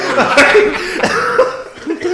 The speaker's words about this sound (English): we apologize for all the coughing, man. We're laughing so hard.